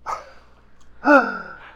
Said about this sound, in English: Gasps. Is not cool. Le gasp.